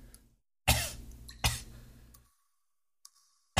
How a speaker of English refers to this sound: Sorry, I got a little bit of a cough. It's a little smoky in the sewer today.